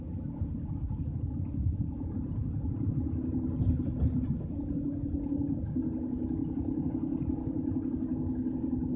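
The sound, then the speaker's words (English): Steady low engine rumble and road drone heard from inside a car driving home and changing lanes, continuous and even throughout, with no voices. “I'm over here jumping lanes. Yeah, I'm 75% of the way home.”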